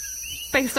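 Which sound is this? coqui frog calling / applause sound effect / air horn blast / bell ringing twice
coqui frog calling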